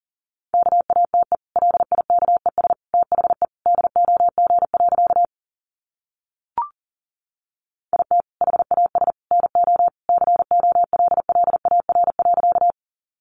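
Rapid Morse code at 40 words per minute: a single mid-pitched tone keyed in fast dots and dashes, two long runs separated by a pause broken only by a brief click.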